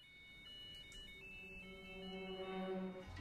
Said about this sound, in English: Once again, I like the Looney Tunes Kill the Rabbit ringtone waking Clive up. Sort of reminds the audience what the tone of the movie is.